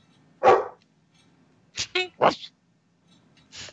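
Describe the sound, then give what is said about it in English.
A female dog barks in sharp, scattered bursts: one loud bark, then a quick cluster of three, and a softer final bark after a pause. “Jesus Christ, you need to muzzle that dog. Yeah, she heard that. She's not happy.”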